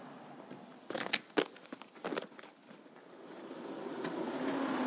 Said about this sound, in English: Well, like this car just going past us now, we've just turned into St. George's Terrace